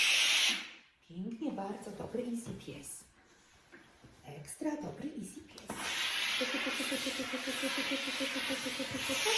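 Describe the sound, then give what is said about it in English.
A steam iron lets out a short hissing burst of steam, then a longer, loud, steady hiss follows after a pause, with a person talking between the bursts and over the second one. “That was a big steam let off. Woo, there it is again.”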